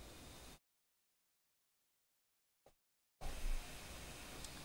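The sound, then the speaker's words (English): Steady, airy hiss of a fan blowing air from a vent directly down onto a person, broad and constant, dropping out abruptly for a few seconds of silence before returning slightly louder. No one speaks. “This damn fan is blowing directly on top of me. So that's why you always hear like a slight hiss.”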